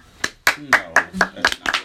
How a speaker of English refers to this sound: Why are we clapping for idiots?